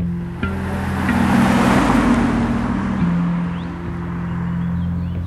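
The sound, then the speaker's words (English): A steady, low engine drone with a broad rushing roar, like a bus rolling along at speed, the pitch shifting slightly as it goes. No voices. “Did you take a long bus ride, passing open fields and making only a few stops along country roads?”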